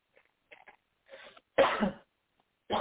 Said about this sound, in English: I need you to take a deep breath and cough from your gut.